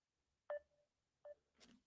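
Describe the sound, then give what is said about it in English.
Two short electronic ringing tones from an outgoing Facebook call, evenly spaced about a second apart, followed by a brief burst of rustling noise; no one speaks. “I'm calling you on Facebook so we can call this a day.”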